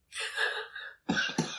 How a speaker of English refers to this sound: Sorry for making you laugh. That'll trigger another cough.